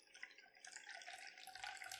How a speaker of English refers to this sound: Okay, then strain your libation into your cocktail glass of choice.